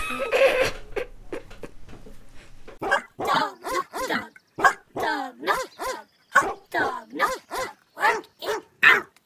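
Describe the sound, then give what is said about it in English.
After a few seconds of muffled rustling, a dog barks loudly, a rapid steady run of about a dozen deep barks with short gaps between them. “Oh, that's definitely a dog.”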